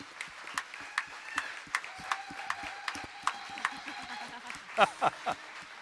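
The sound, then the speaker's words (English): An audience, asked to stand, claps for a man in sharp, scattered bursts that rise and fall over several seconds, with voices and a few high whoops and cheers mixed in toward the end. “And can we just clap for him one more time?”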